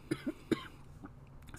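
Three quick coughs in close succession, short, followed by a few softer breathy sounds with no talking.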